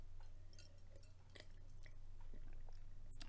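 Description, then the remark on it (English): Someone sips a vodka cocktail: quiet wet slurps, lip smacks and small swallowing clicks over a steady low hum, with no talking. “Now we're going to sip.”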